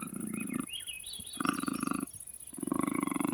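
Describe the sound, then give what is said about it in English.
A male big cat, tied up with ropes, growls in three deep, rasping bursts with short pauses between them as it wakes, loud, with no one speaking. “Well, looky there, Alfred. Your kitty cat's eyes are opening.”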